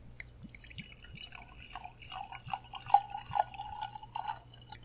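Sake is poured into a wine glass, a steady gurgling trickle with bubbly, rising tones as the glass fills, over a faint low hum and no talking.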